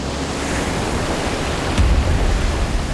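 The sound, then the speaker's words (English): Ocean waves wash steadily in a broad, hissing roar as a ship cuts across a cold ocean, crashing through wave after wave, with a deeper surge of water crashing in partway through. No voices, just the continuous sound of surf. “Their ship cut across the cold blue ocean, crashing through wave after wave.”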